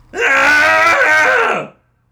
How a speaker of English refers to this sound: And so, yeah, we're going to do a cathartic scream today. Go ahead and join along with us after a three count. And here we go. In three, two, one.